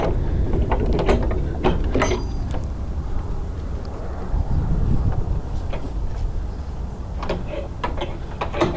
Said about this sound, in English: Opening the back gate.